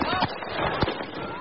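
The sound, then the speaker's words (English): Gunshots ring out as a few sharp, irregular cracks, one noticeably louder than the rest, over a dense wash of crowd noise and overlapping voices, in a street video from Kenosha as a man chased by a crowd falls to the ground and fires a gun during a curfew night. “That man falls to the ground and begins shooting.”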